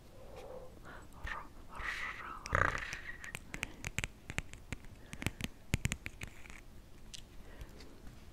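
Crisp taps and clicks on small plastic toy animals, such as a swan, a wolf and a duckling, mixed with soft rummaging and rustling, irregular and fairly quiet, with a brief louder knock partway through and no talking.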